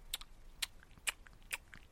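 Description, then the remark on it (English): Crunchy chewing, four crisp, crackling bites at a steady, even pace, fairly quiet, with no talking. “I wonder if you're eating like cereal or something, then yeah, okay, it's going to be a crunch, but it ain't going to sound like, you know.”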